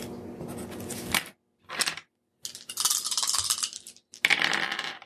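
Dice are re-rolled in a game, rattling and clattering across a hard surface in four bright, bursty rolls separated by short silences, the last burst sharp and loud. No one speaks.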